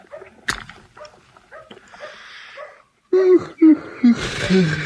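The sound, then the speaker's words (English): A dog whimpers, a few short, high whining cries in quick succession after a quieter stretch of faint rustling and a sharp click. “Your dog sure ain't very lively today, is it?”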